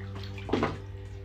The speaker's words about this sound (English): I'm about to get out of the shower.